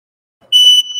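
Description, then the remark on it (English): A shrill electronic alarm tone sounds loudly from about halfway through, a sustained high-pitched beep that stays steady and then continues a little softer, with no one talking. “Yeah, you have to apologize the alarm in the background here.”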